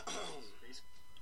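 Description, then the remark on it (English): A short, rough burst of a cough and throat clearing, fairly loud, lasting about a second with no words spoken. “I'm pretty sure you just played a clip of you coughing, clearing your throat.”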